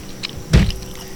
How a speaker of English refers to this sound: You're going to want to start that sentence again because you knocked your microphone over.